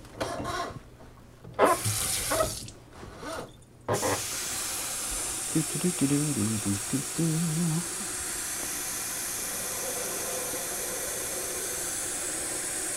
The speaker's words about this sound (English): Put the water in the coffee pot.